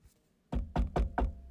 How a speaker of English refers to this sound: That was me knocking on wood, by the way.